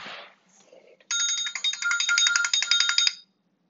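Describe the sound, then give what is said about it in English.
A ringtone from a mobile phone that someone left behind plays for about two seconds: a bright, rapidly pulsing electronic melody, loud, preceded by a brief rustle and then cut off abruptly into silence. “I don't know who this is, but they have a lot of notifications on here.”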